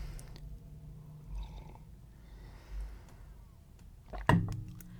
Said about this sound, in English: Let me take another tea sip here.